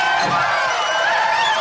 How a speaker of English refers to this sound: Crowd truly going wild, as they should.